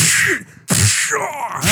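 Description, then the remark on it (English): A voice imitates an Indiana Jones movie punch with two loud, breathy, noisy bursts split by a brief pause, the second one longer and rougher, with no words spoken. “That's how you know it was a really hard punch.”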